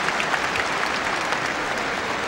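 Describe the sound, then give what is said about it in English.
An audience applauding together to thank the community of Sheffield, a steady wash of dense clapping at a constant level that fills the whole moment with no pauses or voices standing out. “Put your hands together for Sheffield.”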